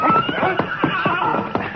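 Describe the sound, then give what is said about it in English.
A gray horse whinnies, a high wavering neigh near the start, while hooves clop in a steady, uneven rhythm; no one speaks. “All right, you take the gray horse”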